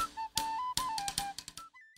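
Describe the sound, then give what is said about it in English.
A bright tin whistle plays a quick stepping driving riff, the main riff of a song, while sharp, crisp rim shots on a snare drum crack in a driving marching beat beneath it, fairly loud, with no voices. “And then the tin whistle comes in. And there's your driving riff.”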